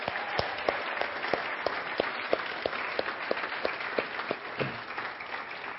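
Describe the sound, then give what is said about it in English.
A church audience breaks into steady applause to cheer on new members, many hands clapping together in a dense, even wash with a few sharper individual claps standing out, sustained at a moderate level throughout. “And so these are some new members. Let's cheer them on.”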